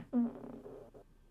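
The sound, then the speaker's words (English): A single fart, roughly a second long, with a buzzy, slightly tonal flutter that trails off at the end. It's fairly quiet, with no talking. “I hope my microphone really, like, the noise gate is on because I just farted.”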